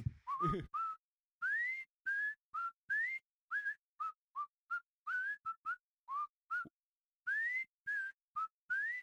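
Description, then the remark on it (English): A person whistles the Andy Griffith TV show theme tune alone, bouncy and upbeat, with short separated notes at a steady rhythm, sliding up into many of them, clear. “Like I'd walk down and you'd hear the like or whatever the whistle fucking.”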